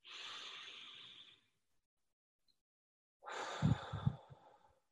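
A long, airy inhale fills the first second and a half, then a pause, followed by a fuller, slightly rough exhale with a breathy sigh, clear with no talking.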